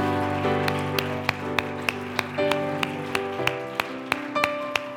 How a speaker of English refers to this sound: If you believe that, clap your hands and give God praise right now.